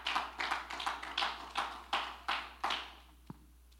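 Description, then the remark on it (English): A church audience claps their hands to the Lord in a steady rhythm, about eight or nine broad bursts of clapping that build and fade, then stop, followed by a single sharp tap and quiet. “Just clap our hands to the Lord right now.”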